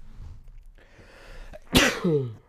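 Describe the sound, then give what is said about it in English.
A single loud, sharp sneeze bursts out after a quiet moment, followed by a brief voiced trailing sound as it fades. “That one was more of like a manly sneeze.”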